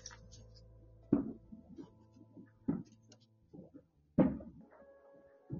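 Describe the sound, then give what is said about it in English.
Fireworks going off in the background at the start of New Year 2021: three muffled, booming bangs at irregular intervals, each with a short rumbling tail, over a low steady hum with some faint softer pops between them. “You guys hear those fireworks in the background? They're literally doing fireworks.”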